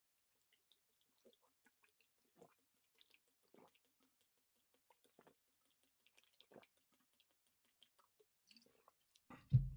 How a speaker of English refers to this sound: I'm going to take a quick hit of my water here because that's a lot, and then we'll kind of get into the main event.